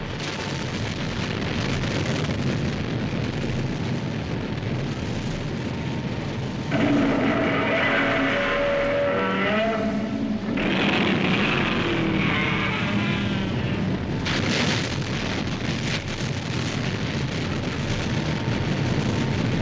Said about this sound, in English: In the middle of the lake, water's bubbling like crazy.